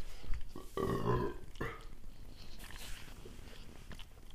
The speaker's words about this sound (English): I feel like I've maybe had too much UKIP water. Yeah. I'm going to burp again.